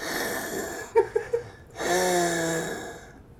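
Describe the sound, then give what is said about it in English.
A man breathes into the listener's ear, imitating asthmatic breathing: a few short, catching gasps, then a long strained inhale with a thin, whistling wheeze, fairly loud. “He had me listen to his breathing. He said, hey, listen to me breathe right now.”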